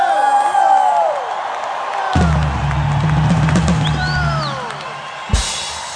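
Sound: crowd cheering and whooping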